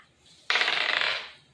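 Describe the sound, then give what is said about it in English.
A twelve-sided die is rolled: a sudden hard clatter, then a bright, rattling tumble across a surface that fades out over about a second. No voices. “Roll me a d12.”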